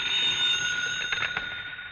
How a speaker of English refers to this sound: Your phone should ring soon. Soon. There it is. Hey, what's that?